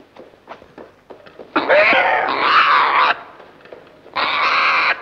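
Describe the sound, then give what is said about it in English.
A cockatoo squawks loudly and harshly, one long grating screech followed by a shorter one after a brief pause, with faint clicking sounds before the first call. “And he turns the light on and there's like this loud parrot that's squawking.”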